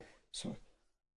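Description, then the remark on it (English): A single sneeze bursts out loud, a sharp hissing blast followed by a short voiced tail, then fades quickly into quiet. “excuse me. Bless you.”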